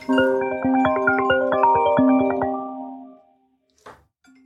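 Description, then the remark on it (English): A bright, melodic ringtone on a real estate agent's phone plays a quick run of chiming notes for about three seconds, then cuts off and fades, followed by a brief soft rustle. “That's what happens in real estate. Your phone rings at a pretty regular basis.”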